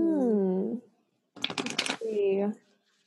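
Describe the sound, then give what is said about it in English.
A quick riffle shuffle of cards for a card reading, a burst of rapid, crisp fluttering clicks lasting about half a second, between two brief stretches of a voice. “So let me clear the deck and I'm just going to shuffle while we talk about what you might like guidance on.”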